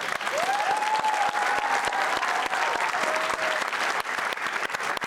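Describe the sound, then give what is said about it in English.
Loud, sustained audience applause fills the whole stretch, a dense crackle of many hands clapping at once, with a single high whistle or cheer rising briefly over it. “But we have additional applause-worthy news, because in a month, you guys are having your first baby, yes.”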